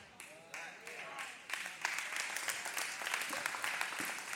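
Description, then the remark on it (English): An audience claps together, a dense patter of many hands that starts moderate, then swells louder and steadier partway through, with a faint voice briefly audible beneath it early on. “Y'all didn't clap too hard on that one.”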